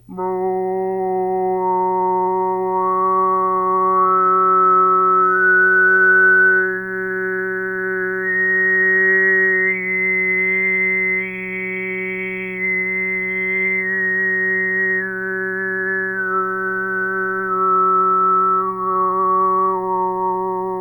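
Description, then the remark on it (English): A steady low sung drone holds one pitch while a bright whistling overtone glides slowly upward, peaks, and then sweeps back down over about twenty seconds of Mongolian overtone singing by a postdoctoral researcher, making more than one sound with the mouth at the same time. “It sounds a bit like a whistle overlying the voice, but related to it, and perhaps it's time to hear a sample of that.”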